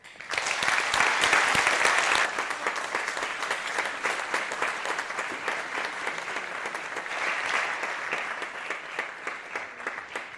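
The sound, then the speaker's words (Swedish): An audience at a student evening event applauds steadily for about ten seconds to welcome the evening's guest, a dense wash of many hands clapping that starts loudest and then holds at a slightly lower, even level without any talking. “Och med det återstår bara för mig att be er att välkomna denna studentaftons gäst”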